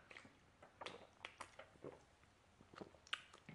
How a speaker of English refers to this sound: Good old sip of water.